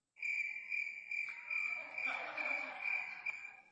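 Loud crickets chirp in a steady, continuous high-pitched drone, constant throughout, with a faint broader rustling hum rising underneath partway through. No one speaks.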